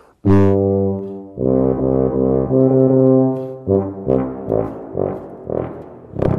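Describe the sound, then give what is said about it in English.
A tuba, played by buzzing the lips into the mouthpiece, plays low, rich brassy notes: a loud opening blast, a long held tone, then a run of six or so shorter, separately tongued notes in a steady rhythm. “We're all doing the same thing, buzzing our lips into the mouthpiece through the tubes.”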